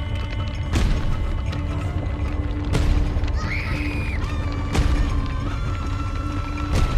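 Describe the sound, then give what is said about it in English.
Four heavy, booming thuds land about two seconds apart over a constant low rumble and creaking, like something huge stomping overhead while the house shakes. No one speaks. “Then the house began to shake, like it was alive. And from above me, I could hear something big stomping.”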